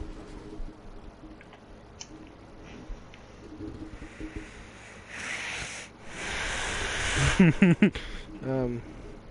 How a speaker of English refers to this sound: I'm just listening to your heavy breathing. Yeah, you gotta listen to my heavy breathing. You gotta breath in.